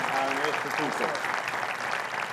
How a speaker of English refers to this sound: So guys, welcome to the stage. Would you four corners help me welcome them? Just a round of applause. We're glad you're here.